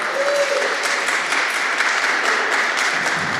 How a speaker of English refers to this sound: Okay, thank you very much. Round of applause for the children, please.